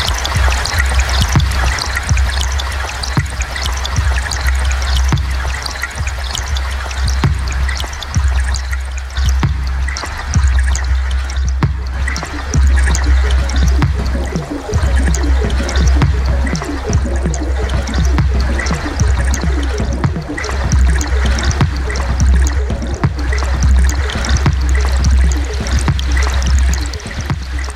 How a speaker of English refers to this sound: Sound that I've been hearing kind of takes me back to going on vacation with my parents to the Adirondacks and kayaking and getting into a rhythm and the sound of the sound of the rhythm of the paddles in the water.